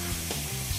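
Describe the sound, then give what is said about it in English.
A hot shower runs with a steady, even hiss of falling water, unbroken for the whole moment, over a faint low hum and no voices. “I think I hear the shower running.”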